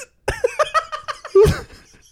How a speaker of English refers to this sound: I have the hiccups now, which is not good for doing an audio podcast. No, sorry, everybody.